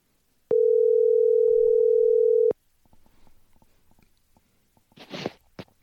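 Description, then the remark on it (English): A steady telephone dial tone hums for about two seconds, then a string of soft clicks as a number is dialed, ending in a short burst of hissy noise. No one speaks. “All right, well, let's go ahead and get them on the line.”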